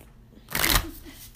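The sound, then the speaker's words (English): A quick riffle of a deck of playing cards being shuffled, a bright papery burst lasting under half a second, moderately loud against a quiet background. “So I'm gonna shuffle again.”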